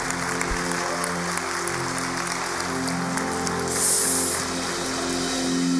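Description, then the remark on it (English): A church audience claps steadily on Christmas Day, a dense wash of many hands that holds through the whole stretch and swells slightly near the end, with no voices rising above it. “And y'all give a round of applause.”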